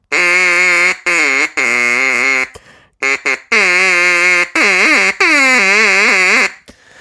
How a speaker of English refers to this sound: I wanted to play with one of these for so long. I'm afraid it's just going to be duck call from now on. Every podcast, there's going to be duck calls.